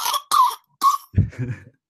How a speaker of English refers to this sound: That sounds like a smoker's cough if I've heard one.